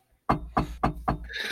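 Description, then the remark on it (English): Four quick knocks on a hard surface, evenly spaced in a steady rhythm, fairly loud, with a low hum underneath and no voices. “Been hearing a lot of knocking in our latest. I'll knock over here.”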